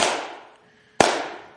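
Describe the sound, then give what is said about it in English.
Two sharp, loud hand claps about a second apart, each a crisp snap followed by a fading ring, with no voices between them. “Clapping, one.”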